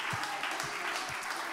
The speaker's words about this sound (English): If you're glad to be in God's house one more time, give him a great big hand clap. Let him know how much you love him.